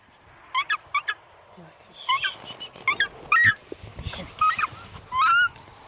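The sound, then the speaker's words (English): Two young takahē give a series of loud, honking squawks in quick bursts, some paired, over a low bed of rustling and handling noise as a ranger catches them at Burwood Bush and puts them into travel boxes. “catching two young takahē and putting them carefully into travel boxes.”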